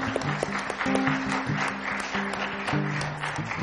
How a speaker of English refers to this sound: Come on, give Jesus a big hand clap today.